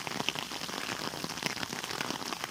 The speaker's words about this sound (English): And the sound of the rain, listen to it.